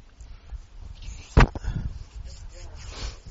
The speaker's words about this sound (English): I love hearing the Bible pages turn.